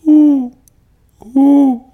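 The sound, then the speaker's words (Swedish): A person imitates an owl with two drawn-out, breathy hoots about a second apart, each a steady low tone, with quiet between them and no other talking. “Det var min uggla.”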